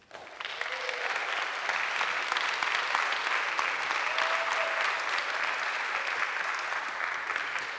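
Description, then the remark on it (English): Steady audience applause at a chapel gathering, given in thanks to the peer advisors: a dense patter of many hands clapping that holds at an even loudness for several seconds before easing slightly at the end. “We want to first welcome with generous supply of thanks through our applause to our PAs.”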